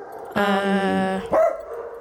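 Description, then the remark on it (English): A dog, Archie, lets out a loud, drawn-out bark followed quickly by a second, shorter one, clear, with no talking around it. “Okay, with Archie here now joining us, the dog board is fully assembled.”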